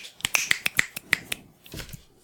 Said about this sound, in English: You can snap with both hands? Yeah. I can't snap with my left hand. You know that when you snap, it's not even your thumb and it's your finger hitting your palm? Yeah, that's what I'm trying to do, and I can't do it.